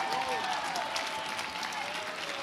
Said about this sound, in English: If you're thankful, take 15 seconds and give the Lord a mighty hand clap and a mighty shout.